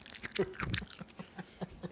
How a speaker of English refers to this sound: Well, they're white peaches. Are white peaches weird? They're crunchy.